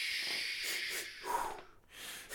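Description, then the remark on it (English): A person makes a run of rhythmic, hissy breaths and puffs, like Lamaze-style panting, with no talking over it. “No, that's Lamaze.”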